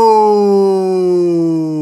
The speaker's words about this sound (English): All right, cool. You test your buzzer first then